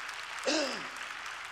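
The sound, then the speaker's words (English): A crowd claps steadily throughout, a dense wash of hand claps, with a brief vocal shout rising over it partway through. “Come on, clap your hands if you're glad the Lord picked you out.”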